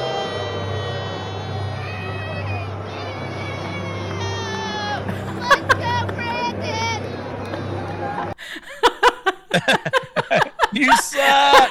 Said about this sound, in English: So here you go. Here's another view of the booing.